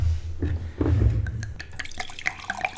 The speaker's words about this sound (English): today we're gonna be reviewing Sideshow wine from Australia. This is number 2, the Puppet Master kind of wine here, and let's go ahead and open this bottle here.